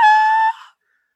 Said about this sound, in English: But no, that came directly from me. Yeah, I will not hold that back. Heart and soul. I will not let my sister take that away from me. That was my fucking scream. And I'll do it again right now.